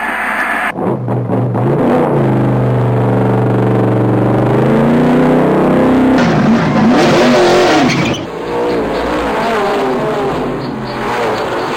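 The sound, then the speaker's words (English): A race car engine fires up and revs loudly, pitch climbing in a long rising whine, then surging again with sharp throttle blips and a rough, roaring idle. “Start your engine.”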